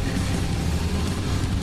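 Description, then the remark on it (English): A steady, rumbling helicopter sound effect, with deep low-end drone and a faint pulsing throb running throughout the short clip at a constant, fairly loud level, no voices. “Does that mean there's helicopters? You hear them? Yep. They're coming in.”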